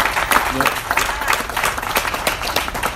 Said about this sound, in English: We also, let's clap for that one too.